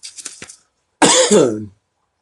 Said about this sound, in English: Oh, goodness. That's that cough coming at me again from that insulation hitting me.